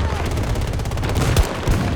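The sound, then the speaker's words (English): Rapid gunfire in the video game Battlefield, with a tech chopper firing, rattles continuously in dense, evenly spaced bursts, loud and steady, with a couple of heavier low thuds standing out near the end. “Oh, there's a tech chopper at the top that just shot me.”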